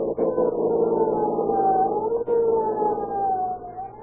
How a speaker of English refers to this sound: With a roar and siren screaming, they race through city streets to protect your lives and property.